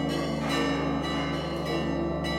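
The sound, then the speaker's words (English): Church bells at the Holy Sepulchre ring loudly and continuously, signaling a changing of the guard between the Christian sects, with fresh strikes roughly every half second layered over a sustained, shimmering wash of overlapping tones. No voices are heard. “The bells are signaling a changing of the guard of sorts.”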